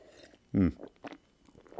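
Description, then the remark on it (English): A single short slurping sip of hot linden tea, made from linden harvested from a tree out front, followed by a few faint mouth and swallowing noises; otherwise quiet. “let me get into what you want to hear right after I take a sip of...”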